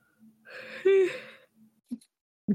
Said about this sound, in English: I've started a yawn train. Huzzah! Mm-hmm. It's true. You really have. Very mean of you. Can we maybe stop yawning, though?